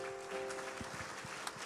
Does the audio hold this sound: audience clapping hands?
yes